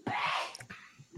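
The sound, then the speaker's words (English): A single sneeze picked up through another person's microphone, a quick sharp burst of breathy noise that sounds somewhat muffled, followed by a few faint low thumps and quiet background hiss. “Bless you. Heard that through your husband's mic.”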